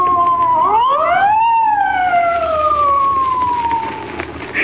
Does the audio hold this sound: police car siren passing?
yes